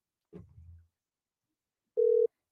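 A brief low thud, then a pause, followed by a single short burst of a steady electronic ringback tone, clear, heard through a phone as an outgoing call rings out.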